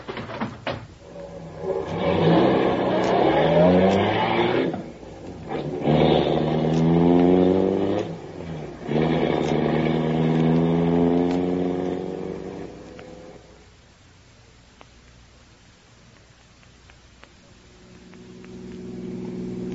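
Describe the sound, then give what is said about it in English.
Grogan's car engine starts and revs hard several times, broken by a couple of sharp thuds like doors shutting, then the roar drops away to a low, steady hum as it drives off in pursuit of another car. “Quick, get in Grogan's car. We're going after him.”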